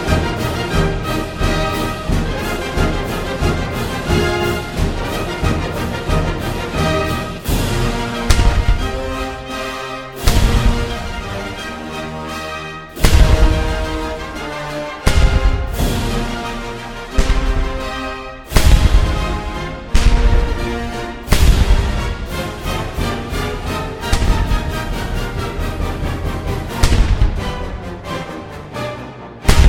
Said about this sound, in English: In any case, it's the 2-year anniversary of Cowboy State Politics, and I think we should rub their nose in it a little bit. Cue the cannons!